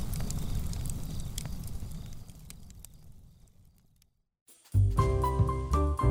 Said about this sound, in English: Campfire.